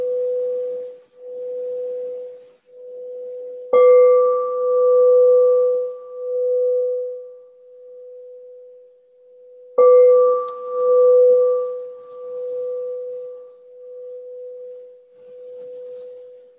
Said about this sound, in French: Tiens, notez aussi comment apparaît et disparaît la cloche.